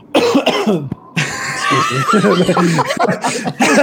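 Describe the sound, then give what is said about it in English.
A person coughs several times in quick, harsh bursts, loud, with some throaty, chuckling sounds mixed in between the coughs. “… got a cough, yeah.”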